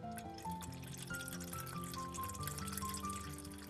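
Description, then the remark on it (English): Water pours steadily into a pot for several seconds while making Korean ramen, a continuous splashing rush with a ringing tone that rises in pitch as the vessel fills. “Put the right amount of water in the pot.”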